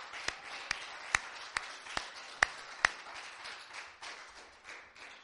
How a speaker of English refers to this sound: Let's just give him another hand clap of praise.